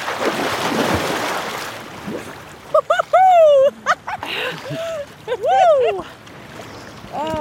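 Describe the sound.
A rush of splashing water opens as people wade into the freezing ocean for a cold plunge, then several voices break into loud, rising shrieks and yelps.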